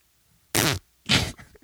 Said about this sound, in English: Okay. Cut that out. For fuck's sake. Cut that fart out. No, he's not going to cut it out.